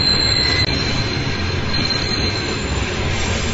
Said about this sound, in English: It's a long train. What is it? Novat runs. Alright. Anyway, when the train started to come, it made a sound which sounded something like a conch shell. How long was that train? It must be more than half a kilometer long.